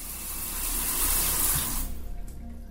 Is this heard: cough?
no